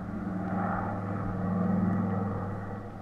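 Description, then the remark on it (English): A steady, loud engine drone with a deep rumbling hum holds throughout, swelling slightly in the middle, like a propeller plane powering up for takeoff, with no voices. It is a chartered plane taking off for Miami. “So he chartered a plane, and we took off for Miami.”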